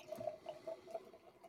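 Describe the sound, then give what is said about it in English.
Brown Hawker's Brewing beer pours into a glass with a soft, steady trickle and a few faint glugging pulses, quiet, with no one talking. “So I'm just pouring it into my glass now.”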